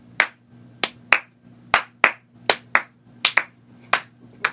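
A dozen or so sharp, loud claps land at uneven intervals, each a crisp smack with a short tail, as several people try to clap together. No one speaks, and a low steady hum sits underneath.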